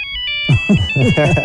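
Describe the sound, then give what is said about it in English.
A cell phone ringtone chimes in steady, high electronic tones, clear, during a candidates' debate, with a voice starting to talk over it partway through. “They told you at the beginning of the debate, shut your phones off.”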